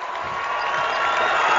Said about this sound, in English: Big, big play there, and the crowd again loves it.